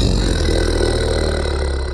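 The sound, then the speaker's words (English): A deep, gravelly snow monster roar in a cave, loud enough to shake the walls, held steadily for about two seconds with a rough, growling texture and no pauses. “And across the cave, the snowman roars so loudly, it shakes the walls.”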